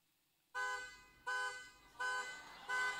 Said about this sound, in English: Car alarm, right? So you know those sounds.